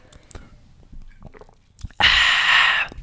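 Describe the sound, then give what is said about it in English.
A few soft, wet mouth clicks lead into a loud slurping sip of an earthy, refreshing ale with an odd lip noise, a single airy rush lasting under a second before cutting off. “I'm just going to take a little sip.”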